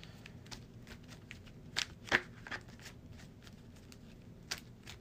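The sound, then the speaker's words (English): A large encounter deck of game cards being shuffled, a steady run of soft papery riffles and slides with a few sharper snaps, quiet overall with no voices. “I'm going to shuffle this big beast of an encounter deck here.”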